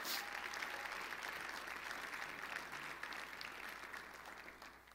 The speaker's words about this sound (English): And so can we applaud the 40 people that have given their life to Jesus through baptism?